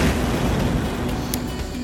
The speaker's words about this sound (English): As you can hear, I've got my Cigar Dave jet lighter. This is, they call, the Super Jet. One gigantic jet from the Cigar Dave R&D Laboratories. Listen to that flame. Listen to that butane flying out.